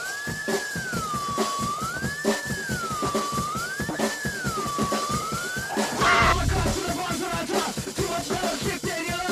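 A cover of a rap song plays: a punchy, steady drum beat under a rising-and-falling siren-like wail, then a loud burst gives way to a busier, denser mix with rapped vocals.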